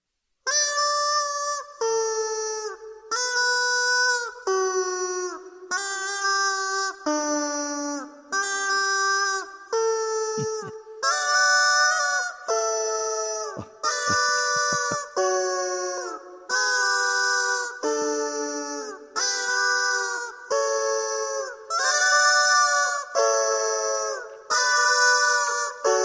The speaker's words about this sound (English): Yes, ladies and gentlemen, this is Pachelbel's Chickens. I was going to say it was Chipmunk Chickens. No, these are This is being performed with Rubber Chickens.